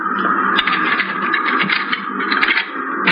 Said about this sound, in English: Now here, pick up these keys and open that door. Go on.